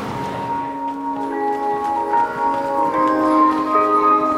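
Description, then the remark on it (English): A chime melody plays from unseen public loudspeakers outdoors at 4:30 on a cold, cloudy day, its sustained bell-like notes overlapping in a slow, steady tune at a moderate, even volume with no one talking. “That song just started playing out of the heavens. I don't know where it's coming from. I can never see these speakers, but it's, there must be a bunch of them because it was everywhere.”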